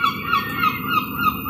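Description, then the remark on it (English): Seagulls call over and over in a quick, steady rhythm, fairly loud, over a constant wash of busy outdoor background noise in Eyre Square, Galway, Ireland, a seaport, with no one talking. “Ara, a seaport. Lots of seagulls.”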